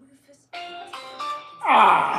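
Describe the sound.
A phone call being dialed on speakerphone at 11:30 at night: a short run of electronic tones steps upward in pitch, then a louder, brighter tone swells in, sounding slightly tinny.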